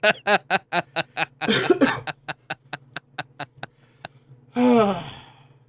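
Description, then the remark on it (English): A fairly loud coughing fit: a rapid, steady run of about a dozen short hacking coughs, followed by a brief pause and one longer, rasping, voiced exhale. “I hope I get all the bad coughs on this podcast today.”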